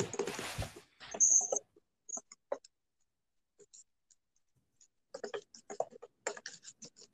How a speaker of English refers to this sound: Let's look this up. A solid gold plated custom supercomputer. Oh, here, let me type it in.